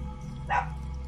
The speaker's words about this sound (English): I heard a dog. Down in the caves. Cave dog.